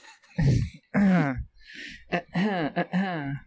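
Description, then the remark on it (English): Fairly loud throat clearing: a rough, raspy burst followed by several croaky, voiced grunts with short pauses between them, and no talking. “Sorry, that's how I clear my throat.”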